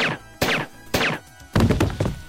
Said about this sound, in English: The bottom line is I really shouldn't be doing this. But if you are happy with the sounds of someone using a silencer to shoot a goat, let's do that again.